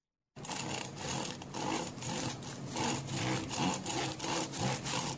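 A knife saws through a crusty loaf of bread with steady back-and-forth strokes, a rough, crackly scraping repeated in an even rhythm, with no voices.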